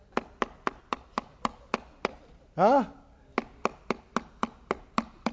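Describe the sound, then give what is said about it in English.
Rapid, steady knocking on a door, about four raps a second, crisp, pausing briefly for a short voiced exclamation before the knocking resumes at the same pace. “Somebody knocking at the door.”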